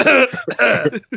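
Two loud, harsh coughs in quick succession, each trailing off into a short rasping catch, with a small throaty burst at the very end.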